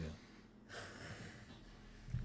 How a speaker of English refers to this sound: If y'all hear heavy breathing, that is Cujo forcing us to play fetch with him.